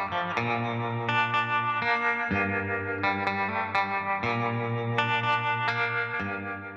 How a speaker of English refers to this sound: Electric guitars, I usually go for like a cleaner kind of oldies sound with some reverb and stuff like that.